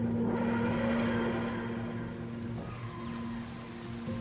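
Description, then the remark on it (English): Ancient engines grind and groan steadily at night, a low mechanical hum with rough grinding textures layered over it, fairly loud and continuous throughout, with no voices. “and they may hear alongside this sight, the grinding and groaning of ancient engines.”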